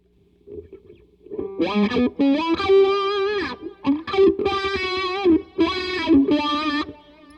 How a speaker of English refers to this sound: It's very hard for me not to move my mouth when I play a wah. I want to go wah, wah, wah, wah, wah, wah, wah.